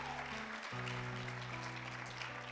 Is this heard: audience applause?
yes